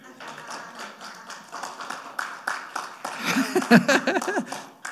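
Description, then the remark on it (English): Audience hand clapping, a steady patter of many overlapping claps that carries through the whole stretch, swelling toward the end as voices call out over it. “That's worthy of a hand clap, by the way.”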